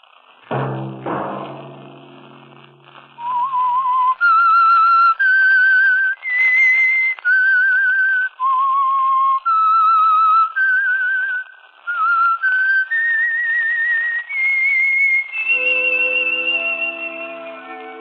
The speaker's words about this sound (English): That whistle be your signal for the Signal Oil program, The Whistler, each Sunday night at this same time.